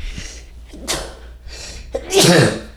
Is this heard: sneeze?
yes